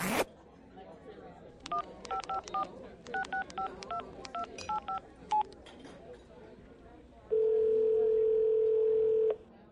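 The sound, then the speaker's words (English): Around a dozen quick touch-tone beeps from dialing a telephone are punched in short irregular bursts, clear, followed after a pause by a loud, steady electronic tone lasting a couple of seconds. “Now, get on that phone and call Michael.”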